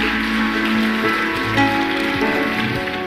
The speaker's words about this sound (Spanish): Vamos a darle un aplauso fuerte a nuestro Señor en este día. Si tú estás agradecido con Dios, dale ese aplauso fuerte a Él. Vamos.